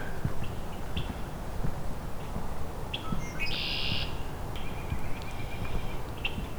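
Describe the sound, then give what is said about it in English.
Common grackles and red-winged blackbirds call in a busy outdoor chorus, with harsh squeaky notes and buzzy trills rising over a steady rumble of background noise. No one speaks. “This is both common grackle and red-winged blackbird calling.”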